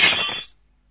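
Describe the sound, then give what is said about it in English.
A single crash of breaking glass, a sound effect from the BBC sound effects archive, loud, with a bright shattering burst that quickly fades into silence after about half a second. No voices. “Yeah, it's the ability to insert broken glass noises.”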